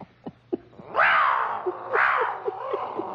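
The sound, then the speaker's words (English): A large pet cat, bigger than most cats, lets out two long, rising-and-falling yowls, harsh and drawn out, separated by short pauses, with a few brief chirping or clicking sounds scattered between them. “Why'd you get a small cat like everybody else has? No, you got to get one bigger than the rest. Bigger noise, too.”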